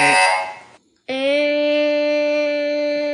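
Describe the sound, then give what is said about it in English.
A micro:bit buzzer sounds twice: a short, harsh burst, a brief pause, then a long, steady, loud electronic tone held for about two seconds. “I could write a program that says every 5 seconds, mm-hmm. make the buzzer noise.”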